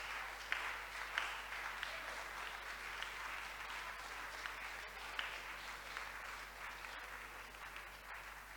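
A church audience gives a sustained round of applause, dense steady clapping from many hands holding an even level for several seconds, with a few sharper claps standing out.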